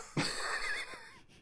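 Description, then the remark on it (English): A person breathes out in a long, raspy, wheezing huff, imitating an animal's open-mouthed panting with mouth agape and tongue out. It is a single drawn-out breath that fades at the end, with no talking. “just kind of stands there, mouth agape with a tongue out, just panting.”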